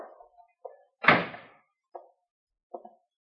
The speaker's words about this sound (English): You men stay outside and close that door.